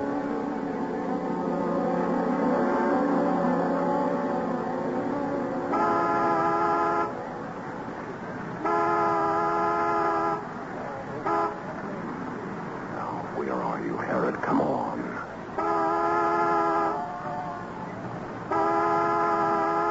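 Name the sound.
car horn honking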